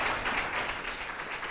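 A crowd applauds steadily, many hands clapping together in a dense, even wash of sound that holds at a moderate, constant level throughout without any voices.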